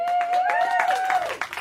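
Audience applause for Mitt Romney, former Republican presidential nominee: a dense, steady patter of many hands clapping at moderate loudness, with a sustained tonal sound, like a cheer or whistle, running through it. No one speaks.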